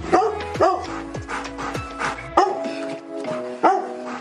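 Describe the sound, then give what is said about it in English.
A female dog barks loudly and repeatedly, with several deep, resonant barks in an uneven rhythm, a few higher yips mixed in. “She would bark at everything, and she had this deep, loud bark that you could definitely hear.”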